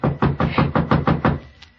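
A quick, evenly spaced series of about seven firm knocks on a wooden cabin door, fairly loud, followed by a brief quiet tail. No one speaks.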